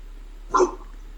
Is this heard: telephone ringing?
no